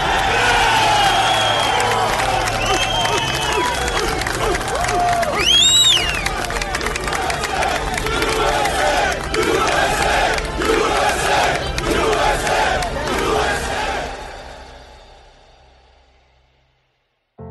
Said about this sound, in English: Those rescue workers erupted. It was a cry, a roar of a crowd who wanted justice to be done, who were searching with their bare hands for anybody who'd come out alive.